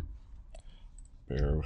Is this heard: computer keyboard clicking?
yes